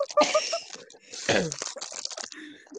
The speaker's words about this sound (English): Dude, is someone just bottle flipping right now? Who's doing that?